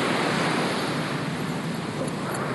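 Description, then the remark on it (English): Ocean surf roars steadily against the shore beside a roadside, a dense, continuous wash of crashing waves with no pauses, loud, with a hint of wind blowing across it. “So, in your left ear, if you've got your headphones oriented the way I have them, you're hearing the ocean, and then on the right is the roadside, but I think the ocean is probably overpowering everything else at this point.”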